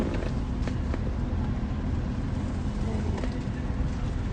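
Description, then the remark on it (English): Steady low rumble of many car engines and traffic noise in a busy lot, with a few faint brief clicks and knocks scattered through, no clear talking. “A lot of cars in here.”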